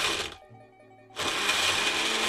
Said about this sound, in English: You put the top on the blender. Put the top on the blender. Okay. Let it rip.